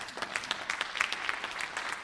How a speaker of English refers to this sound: Yes, clap.